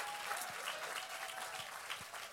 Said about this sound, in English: Yeah, I appreciate the 30% hand clap. God bless you.